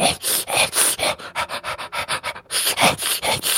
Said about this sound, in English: And I want to imagine, like, the stopping point is around your knee as we hear, just from the other side, dog-like noises and just the chewing of flesh.